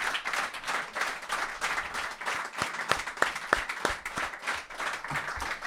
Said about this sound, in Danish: Så simpelthen bare klap hende op?